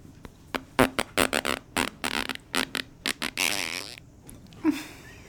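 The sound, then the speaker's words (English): Someone blows a mouth-made fart noise: a string of quick, wet sputtering bursts followed by a longer raspy blow and one last short puff. “A freaking fart.”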